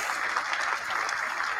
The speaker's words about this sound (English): And one more round of applause